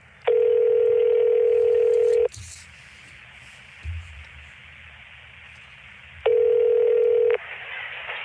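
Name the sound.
telephone dialing tones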